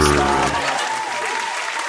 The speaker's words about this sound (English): I had to get your applause back in there.